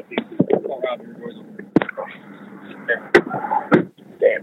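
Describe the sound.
Voices talk continuously while a few sharp, loud thuds cut through, most likely the door of an Uber car, which had been open, being shut, with clunks spaced irregularly over a few seconds.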